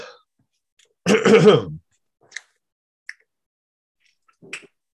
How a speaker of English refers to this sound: What are you doing? A mouth warm-up? I'm just sucking all the dry crumbs of bourbon biscuit out of my mouth so I didn't cough while I was trying to record.